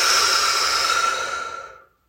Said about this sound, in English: Take a deep breath in through your nose and out through your mouth.